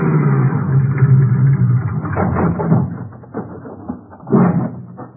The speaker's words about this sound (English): An hour later, I pulled up in the rear of the highway patrol office in Starrett,